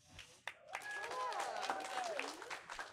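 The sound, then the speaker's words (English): Audience applause for the panelists joining a panel conversation rises after a brief pause into a steady wash of many hands clapping for about two seconds, with a few tonal voices or whoops mixed into the crowd noise. “So before we get into it, let's give a round of applause for my lovely panelists that are joining me here today.”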